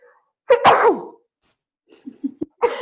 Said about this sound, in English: sorry, I'm going to sneeze. Hang on.